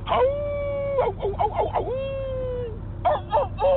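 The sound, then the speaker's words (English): A voice imitates a rooster crowing: a long, strained, tonal call that wavers and breaks into choppy bursts, then a second drawn-out crow and a short broken cry at the end. “That's a rooster. Give me a wolf.”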